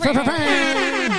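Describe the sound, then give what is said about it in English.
A single loud air horn blast holds for about a second, its brassy pitch sagging slightly downward toward the end, with no talking. “That's what when he honks his horn, that's what it sounds like.”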